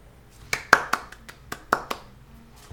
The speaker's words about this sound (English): Yeah, it was a clap. We're a clapping pod.